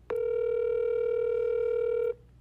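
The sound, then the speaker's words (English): A FaceTime video call's connecting ring: one steady, clean electronic tone holding for about two seconds at even loudness, starting and stopping abruptly, with no voices over it. “Patch her in.”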